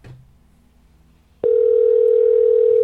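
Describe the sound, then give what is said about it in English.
After a moment of near silence, a telephone dial tone switches on abruptly and holds steady and loud, a single unbroken hum with no talking over it, as a call is placed to Brandon Wardell. “All right, well, we got to get Brandon Wardell on the phone.”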